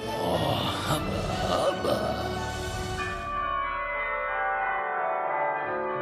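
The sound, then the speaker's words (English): A bright peal of bells rings out with dense, overlapping strikes for a few seconds, then the tones hang and slowly fade into a sustained, shimmering ring. “hoping to hear the sound of wedding bells and find true love in this excruciating car crash of courtship.”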